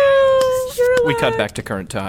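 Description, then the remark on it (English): A cat yowls in one long, loud, wavering wail lasting over a second, then a voice starts talking over the tail end of the cry. “Fire's going. Oh, my God. No, that's a cat.”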